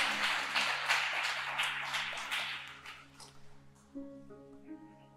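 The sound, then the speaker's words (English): An audience claps together after a testimony in a dense, steady burst that thins out and fades after about three seconds, while a low sustained musical tone hums underneath and a soft melody begins. “That's an awkward clap, but you can clap. That was amazing testimony.”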